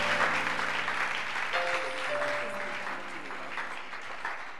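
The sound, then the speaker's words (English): An audience claps hands for Jesus in a dense, continuous burst of applause lasting several seconds, loud and steady, with soft sustained musical tones held underneath. “I said, put your hands together for him.”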